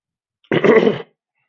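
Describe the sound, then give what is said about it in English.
A single short, gruff throat clearing, fairly loud, lasting about half a second with silence around it and no talking. “Don't clear your throat.”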